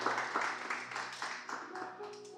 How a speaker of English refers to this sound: I think now you're interviewing for your PhD in cybersecurity. I thought you'd give a round of applause to that.